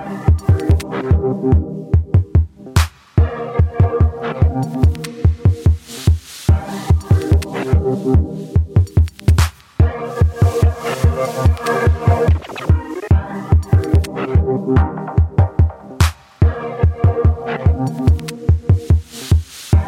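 An electronic music track plays on its own, driven by a steady, punchy low kick beat under dense layered synth chords, with a few brief drops in the texture along the way.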